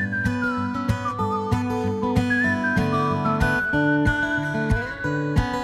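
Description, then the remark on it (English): A high, clear whistled melody with gentle vibrato, a whistling break in a live performance standing in for a lead guitar part, glides over a full instrumental backing of steady chords and rhythmic hits, the whistle sitting prominently on top throughout. “He does this, like, pretty good whistling break.”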